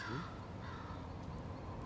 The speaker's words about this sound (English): Are you sure about those crows there?